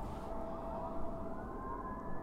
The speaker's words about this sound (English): Those fucking sirens are on the other side of the river. But because it's just me and the river and nothing in the way, surprisingly loud.